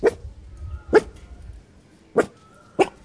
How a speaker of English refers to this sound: He ran around the garden digging up plants and practicing his fierce bark on the local birds.